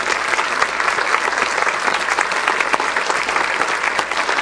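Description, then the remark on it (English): A large audience stands and claps steadily to honor veterans, dense overlapping applause at an even, fairly loud level from start to finish, with no pause or buildup. “Let's stand together and give them a round of applause and thank them for their sacrifice and their service.”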